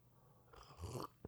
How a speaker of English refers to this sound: Anyways, let me have a sip of delicious Izzy's coffee.